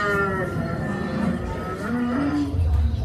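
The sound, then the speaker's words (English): A loud, deep Tyrannosaurus rex roar, the park's T-Rex at Jurassic World, rumbles continuously for about three seconds, its bellowing tone wavering and shifting in pitch, dominant with no pauses. “For example, if these packies hear the park's T-Rex roar, they will become noticeably upset as they recognize the potential threat.”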